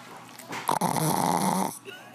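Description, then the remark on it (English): A female dog snores in one long, loud, rattling breath lasting about a second, harsh with a buzzing texture, followed by a quieter wheezy exhale. “Is she as farty as she is snorty? Not a farter.”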